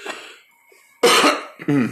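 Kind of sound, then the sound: human body sound, throat clearing cough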